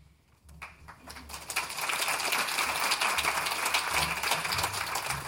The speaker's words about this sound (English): Yes, thank you for the warm applause, although I don't think they should be for me.